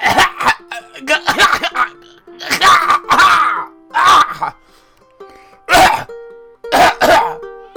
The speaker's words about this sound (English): He would get to the top, and for the first time in weeks and months, he would open his mouth and begin coughing and coughing. Big hacks.